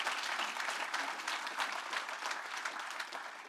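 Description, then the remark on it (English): Steady applause from a sizable group for the Nexus youth ministry's volunteers, staff and teens fills the space, a dense continuous patter of many hands clapping at even volume for a few seconds with no voices standing out. “Yes, of course, applause.”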